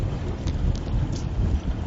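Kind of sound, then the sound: nature, wind blowing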